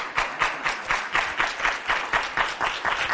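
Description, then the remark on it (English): An audience applauds the students of Michigan for their work, many hands clapping together in a dense, even patter with a slight rhythmic pulse, moderately loud and sustained for a few seconds with no voices over it. “So I want to, you know, let's give these guys a round of applause for the work that they're doing.”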